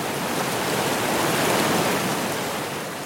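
A steady, dense roar of rushing water from Vernal Falls, a powerful waterfall whose clouds of water cover the switchbacks of the Mist Trail, filling the air with constant hissing spray and no pauses or voices.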